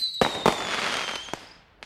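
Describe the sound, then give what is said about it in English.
Fireworks bang in a quick series of sharp cracks, two loud bursts close together then fainter pops, over a lingering crackling hiss and a thin descending whistle, with no voices. “Some of the most popular things to do are have a barbecue, go to a parade, and of course, see fireworks.”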